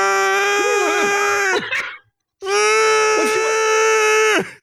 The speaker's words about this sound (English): this is what a siren sounds like.